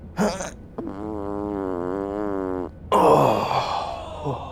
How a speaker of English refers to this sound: Oh, hold on a second here. Oh, I got a fart.